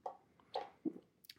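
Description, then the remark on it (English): Several quiet, wet gulping sounds, a quick series of swallows of wine in a big gulp in the space of a breath, with no talking. “Wine is not good in a big gulp.”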